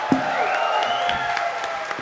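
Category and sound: crowd, applause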